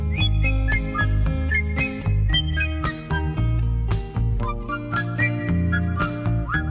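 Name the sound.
person whistling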